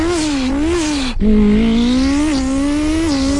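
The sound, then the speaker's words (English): A man imitates a Ferrari SF90 sports car engine with his mouth, a loud continuous buzzing drone that climbs and wavers in pitch, breaks briefly for a breath, then resumes with rising revs. “SF90, SF90.”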